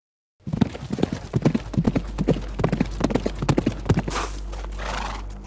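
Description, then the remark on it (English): A horse's hooves clip-clop in a steady rhythm on sand for several seconds, then the rider stops the horse and a breathy snort or whinny follows. “Claudius stopped his horse and studied the markings in the sand.”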